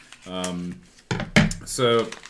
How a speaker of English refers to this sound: This is wrapped up, and I don't know if the paper is part of it, so I'm going to kind of be careful as I rip it in half immediately.